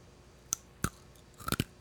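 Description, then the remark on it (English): Crisp crunching as someone bites and chews a crunchy candy, several sharp cracks spaced unevenly, then a quick cluster of crunches near the end. No talking. “Take a bite of one. Take another one. I want to hear it in the microphone.”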